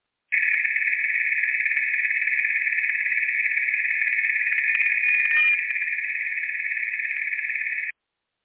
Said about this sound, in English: Just these quick tones that come in where I'm hearing the rock is ringing. The rock is resonating from these receptions.